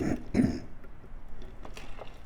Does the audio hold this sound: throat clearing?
yes